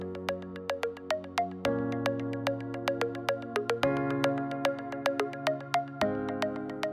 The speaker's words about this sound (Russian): колокол. Сейчас мы узнаем, который час. 12. Но поскольку сегодня Пасха православная, не католическая, то звон обычный, а не перезвон. На прошлых выходных был перезвон. Ты думаешь, что она автоматически? Не знаю, мне кажется, человек. Человек звонит.